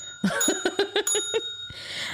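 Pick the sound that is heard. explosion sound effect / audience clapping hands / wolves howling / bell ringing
bell ringing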